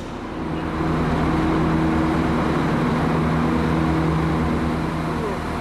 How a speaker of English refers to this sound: Okay, we're in Limerick station, Colbert station in Limerick. It is 6:30, we're getting on the 6:35 a.m. train to Dublin.